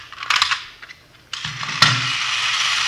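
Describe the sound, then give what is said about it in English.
A small wind-up miniature Sherman toy tank whirs and clatters, a brief burst of ratcheting gears followed by a steadier mechanical buzz with a sharp click partway through, no voices. “See this gadget here? Pretty clever, huh? Yeah. Miniature Sherman tank.”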